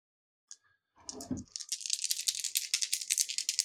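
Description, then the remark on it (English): Three dice clatter and rattle in a rapid, bright stream of clicks that builds after a low thump, continuing steadily to the end. No one speaks. “So that's three dice.”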